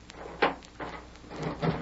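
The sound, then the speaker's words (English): A door is unlocked and opened in a Lone Ranger radio drama: a few dull clunks and rattles of the latch and bolt spaced over a couple of seconds, moderately loud, with no talking. “Open the door. Just wait till I unlock it.”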